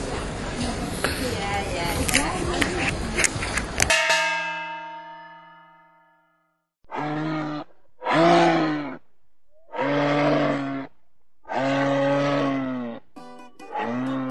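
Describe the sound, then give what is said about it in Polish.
A loud, noisy rush ends in a ringing, bell-like clang that fades into silence, followed by five drawn-out, moaning moose calls, each about a second long, spaced with short pauses. “Wszyscy zastanawiacie się pewnie, co chciał wam powiedzieć Łoś.”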